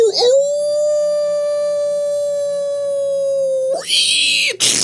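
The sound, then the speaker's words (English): A single loud wolf howl swoops up at the start, then holds one steady, sustained pitch for about three and a half seconds before breaking off into a short, noisy rush. “The wolf's dead.”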